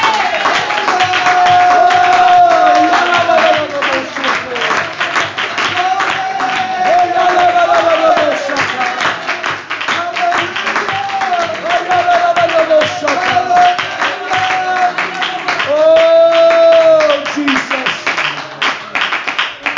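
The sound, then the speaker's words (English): An audience claps along steadily and loudly in worship while voices sing or call out with rising and falling tones throughout, the clapping forming a dense, continuous rhythm under the singing. “Oh, let's clap our hands and worship Him.”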